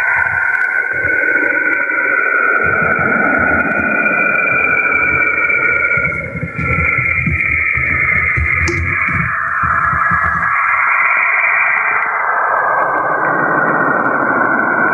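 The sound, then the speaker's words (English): The eerie electronic theme from the film Forbidden Planet, known as the eerie sounds of Saturn: wavering, sustained synthetic tones over a deep rumbling drone, playing loudly and continuously for the whole stretch with no voices. “he used the theme from Forbidden Planet. Well, you know what that was? Tell me. The eerie sounds of Saturn.”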